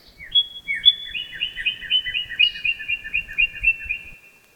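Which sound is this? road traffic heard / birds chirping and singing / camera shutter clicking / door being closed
birds chirping and singing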